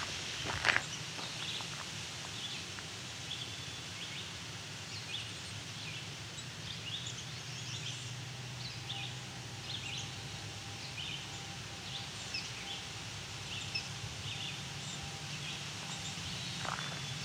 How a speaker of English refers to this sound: Some chickadees.